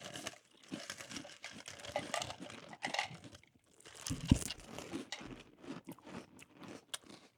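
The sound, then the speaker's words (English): Someone steadily crunches a mouthful of Honeycomb cereal, a dense run of crisp, crackly bites and chewing that keeps going without pause, with no talking over it. “This is like a puffier Honey Nut Cheerio. I love honeycomb so Those much.”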